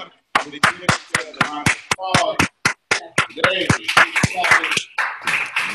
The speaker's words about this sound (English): Come on, give yourself a round of applause. Give yourself, no, that wasn't good enough.